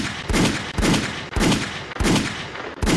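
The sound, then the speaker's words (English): A rapid series of loud gunshots, roughly six sharp bangs in a steady rhythm about half a second apart, each followed by a brief rumbling decay, with no voices present. “Gunshots.”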